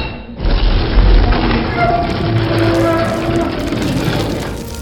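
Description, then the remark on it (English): A loud, heavy rumble bursts in with a deep boom, then continues as a dense, crackling roar of crumbling debris as a ceiling pulls back and concrete dust and debris rain down, a sound effect in an audio drama. “Concrete dust rains down upon us as the ceiling pulls back.”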